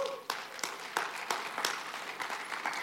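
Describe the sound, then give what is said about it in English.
A church audience claps for eight new groups starting that morning, in a steady scattered patter, with sharper individual claps standing out roughly every third of a second over a continuous wash of applause. “Yes, you can give a clap to that too.”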